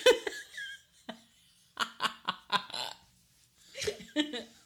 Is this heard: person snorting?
yes